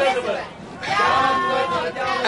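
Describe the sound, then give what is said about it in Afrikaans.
A crowd of protesters shouts together in a loud, ragged chant of "down with Hotel Elizabeth", with a brief dip before the shouting surges back and holds steady to the end. “Ek dink hulle skree down with Hotel Elizabeth.”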